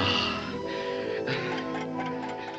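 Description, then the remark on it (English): A clock ticks at a steady, unhurried pace, partly buried beneath sustained orchestral music that fills the whole clip. “Oh, it ticks.”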